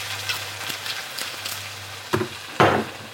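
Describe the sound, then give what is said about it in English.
Wine from the fridge is poured into a hot pan of mince, hitting it with a bright, hissing sizzle that flares up loudly near the end, over a low steady hum and a few soft clinks. “Wine going in. Oh, love that sound.”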